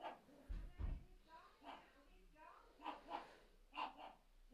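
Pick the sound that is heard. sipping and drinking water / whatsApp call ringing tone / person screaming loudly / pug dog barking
pug dog barking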